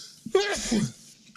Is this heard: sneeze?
yes